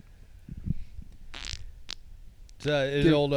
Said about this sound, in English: Did you just fucking fart?